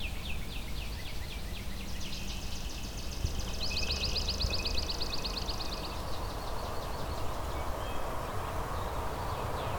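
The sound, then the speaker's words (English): Northern cardinal and robin calls mix into an outdoor bird chorus of repeated high chirps and a fast ringing trill over a steady background hiss with no talking. “There's also northern cardinal here, some robins.”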